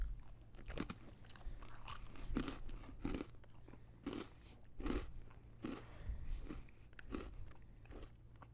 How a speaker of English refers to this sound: Well, let me play an example because they're taste testing peanut butter with pretzels. And of course, we get to hear them crunching on a pretzel.